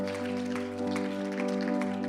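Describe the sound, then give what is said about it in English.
Steady applause from a church audience for people who have just prayed to accept Jesus, a dense patter of many hands clapping, running under a sustained, droning musical tone that holds throughout. “Come on, let's give that person, those people, a round of applause.”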